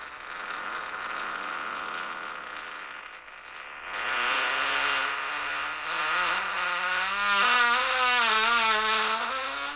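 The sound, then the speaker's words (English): A long, juicy fart from a man in a video being played back plays out over several seconds, a loud buzzy rumble whose pitch climbs and wavers near the end, with no one talking over it. “And listen to this fart.”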